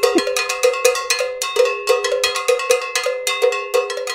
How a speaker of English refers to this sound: The cowbell's a fun thing to talk about.